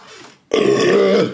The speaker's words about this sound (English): That doesn't count as part of my 30 seconds. I just really needed a burp.